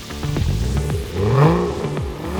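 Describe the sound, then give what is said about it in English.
A powerful Ferrari sports car engine revs and roars, its pitch climbing and dipping through quick throttle blips, loud with a rough, growling mechanical tone. “He decided he would take the Ferrari to one of Rama's lectures in Tarrytown.”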